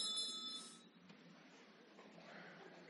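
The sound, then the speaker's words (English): A small bell is rung once to begin group prayer, with a bright, high metallic tone that lasts under a second, then gives way to quiet ambience. “Let's ring the bell.”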